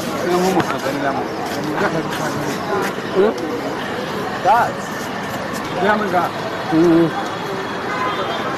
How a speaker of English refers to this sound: Let us take you to a petrol station in a part of Bujumbura, the capital, for a few minutes.